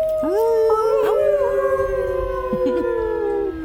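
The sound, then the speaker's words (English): Several voices howl together like wolves, long sustained wavering tones layered in unison, loud, holding steady for a few seconds before cutting off. “We howl in unison.”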